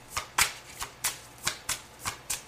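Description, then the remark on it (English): Tarot cards from an Eight Coins Tattoo Tarot deck being shuffled, a quick run of crisp, papery riffles and slaps in an uneven rhythm, about eight soft bursts with no talking. “I'm using the Eight Coins Tattoo Tarot deck. May I have three cards, please?”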